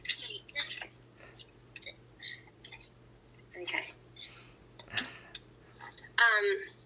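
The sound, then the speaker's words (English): Crinkly rustling of a plastic bag in several irregular bursts, the last one louder, over a steady low electrical hum. “Hey, can you take that away? It's a bit noisy, okay? In the plastic bag, alright?”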